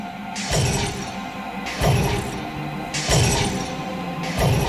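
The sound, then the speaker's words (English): Glass shattering repeats four times in a steady rhythm, each crash bursting loud and bright over a pounding, distorted industrial music track from an album, with no voices. “Hence the glass.”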